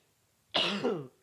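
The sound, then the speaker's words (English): A single harsh cough bursts out suddenly after a moment of quiet, loud, with a rough, raspy tail lasting about half a second. No talking accompanies it. “Fuck, it doesn't help that I got this fucking cough, does it?”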